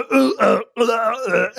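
Two loud, drawn-out burps in quick succession, close and voiced with a deep, croaky rumble, separated by a brief pause and with no talking.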